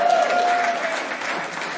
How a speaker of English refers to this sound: And since we're clapping here, we have a couple other things to clap about.